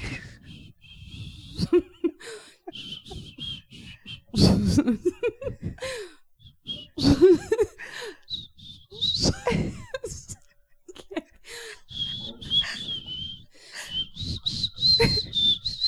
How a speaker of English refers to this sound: I would say our whistling technique is very similar. It is. It's very It's through the teeth. I don't know if I do it through the teeth. I don't think I do.